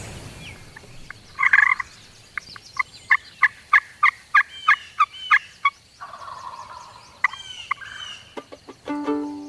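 A wild turkey gobbles outdoors, with a loud rattling burst followed by a quick, evenly spaced string of sharp calls and more gobbles near the end. The bird sounds fairly close, and no one speaks.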